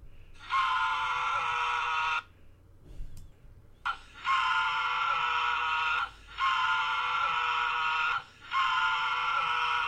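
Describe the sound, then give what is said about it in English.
A man screams loudly and theatrically in four long, sustained bursts with short gaps between them, the screams raw, exaggerated for comic effect, like the screaming comedian Sam Kinison is known for. “But I guess he's kind of known for, you know, his comedy, but also I guess his screaming.”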